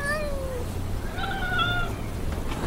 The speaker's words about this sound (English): I'm so happy to see you, kitty! How did you know I needed some cheering up?